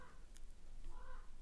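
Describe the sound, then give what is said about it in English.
A raven caws twice, harsh, with a short gap between the calls, over a steady low background rumble. “Can you hear the raven?”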